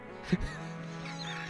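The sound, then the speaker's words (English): A chicken clucks once in a short, sharp squawk near the start of a song, followed by a steady, low sustained musical tone that hums on underneath. “Organically sourced chicken.”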